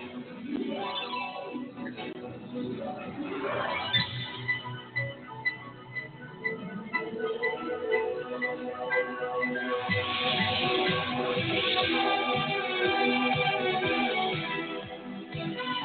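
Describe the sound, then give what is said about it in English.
The 1983 opening credits theme of the HBO Saturday Night movie of the week plays: dense, sustained orchestral music with held chords and layered melody, swelling fuller in the second half, with no voices over it. “This is the 1983 opening credits for the HBO Saturday Night movie of the week.”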